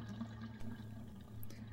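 Water rushes steadily through an impossibly long, deep pipe, a continuous hollow roar with a low droning resonance underneath, fairly quiet, with no voices.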